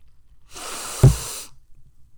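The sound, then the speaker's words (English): A single breathy sniff of a very bubbly glass of beer poured from a can, lasting about a second, rising and falling with a soft thump at its peak, with no talking. “Let's give it a sniff”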